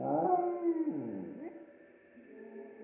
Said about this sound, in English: Being a slightly pampered black Pomeranian, Albert was normally a little yappy, but when Victor saw him, he whimpered.